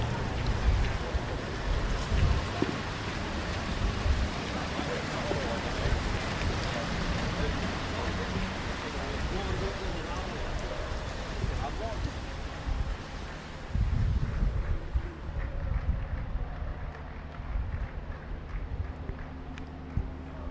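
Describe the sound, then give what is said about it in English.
Steady, heavy rain pours down across the still empty Camp Nou stadium about an hour and three quarters before a game, a dense continuous hiss with low rumbling wind noise, holding constant for the whole stretch and easing slightly in brightness toward the end. “So, Camp Nou, it's all raining.”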